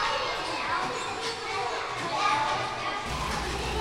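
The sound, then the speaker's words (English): A steady, lively hubbub of children's voices, high and overlapping, with bursts of chatter and what sound like laughs, as children laugh and run while arriving in the morning at a childcare, over a continuous background of movement and playground noise, with the pitter-patter of their feet on the sidewalk. “I miss that sound because they would be laughing and running.”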